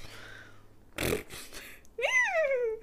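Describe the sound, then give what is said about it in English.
Someone imitates a horse: a short breathy, snorting burst, then a loud, wavering whinny that jumps up in pitch and slowly slides back down. “That's what horses say.”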